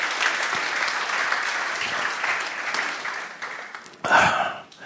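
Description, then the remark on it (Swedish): A crowd applauds for Jesus, a dense wash of many hands clapping steadily at a constant level for about four seconds, then a brief louder burst with voices before it fades. “And let's shake it up by just giving a clap for Jesus.”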